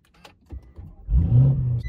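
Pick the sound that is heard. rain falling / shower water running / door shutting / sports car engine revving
sports car engine revving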